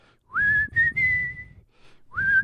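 A person whistles a slow, sustained rock ballad melody, with long held notes gliding between pitches, a brief pause, then the tune resumes.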